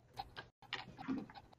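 A dog pants in quick, rhythmic huffs, with a brief pause partway through before the breathy panting picks up again.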